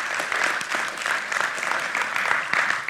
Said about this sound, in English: So let's give a round of applause for the veterans here, thanking them for their service.